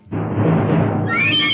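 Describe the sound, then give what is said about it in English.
A horse, with a gray-clad corporal sitting astride it beside a road, whinnies, starting with a rough, breathy snort that rises into a shrill, high-pitched neigh near the end. No one speaks. “And on the other side of the road, the gray-clad corporal sits astride his horse waiting for you.”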